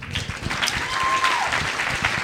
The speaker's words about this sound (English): Man, yeah, you can clap for that.